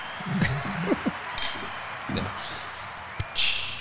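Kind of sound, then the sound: household object, glasses clinking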